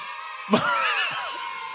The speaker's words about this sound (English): Can I hear those children scream one more time?